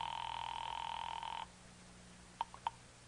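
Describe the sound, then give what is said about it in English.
A telephone ring comes through a phone line from a phone booth on a corner: one steady electronic ring, about a second and a half long, then a hush broken by a few short, sharp clicks. “So I limped as far as the phone booth on the corner.”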